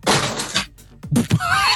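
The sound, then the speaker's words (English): Objects swept off a desk crash down in a loud, scattered clatter, followed by a pause and then a couple of heavy thuds and some rattling as things settle. “just swiped everything off his desk, being like, "All right, you want official?”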